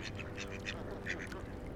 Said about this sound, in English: Floating on the surface of the pond, quacking nastily at each other, is a flock of cream-feathered ducks, dappled with a light dusting of cinnamon spots.